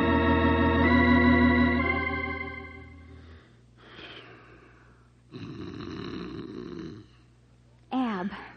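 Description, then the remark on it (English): A man snores loudly in his sleep, starting with a long, drawn-out rumbling snore and followed by several shorter rasping snorts and breaths separated by brief pauses. “Roll over. You're snoring.”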